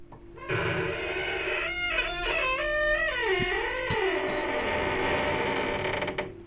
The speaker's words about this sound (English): That was longer than I remember it being. That's a really long, creaky door, so let's give it a 4.